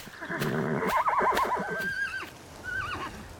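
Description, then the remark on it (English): A horse whinnies in a stable in a loud, quavering trill that wavers up and down, then lets out a shorter high neigh and a softer, fading whinny near the end. “The only occupied ones were in the back, where a pair of horses stood.”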